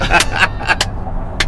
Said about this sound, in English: It's the fucking car cast, you asshole. We're in a truck, bitch.